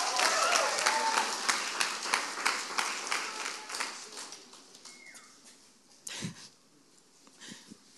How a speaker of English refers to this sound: Can you guys clap for all of my people? Good job, guys.